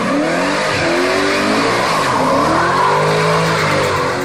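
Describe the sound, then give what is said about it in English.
A car engine revs hard as tires squeal loudly, the vehicle tearing away at speed with continuous screeching and roaring, no talking over it. “Mama's driving today, and she's got some lead in her high heels.”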